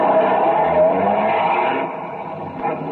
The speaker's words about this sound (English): By 2:05, half the dragnet crew pulled out of the police garage and scattered over the city to their places. By 2:35, the other half pulled out, and a few minutes later, Ben and I followed.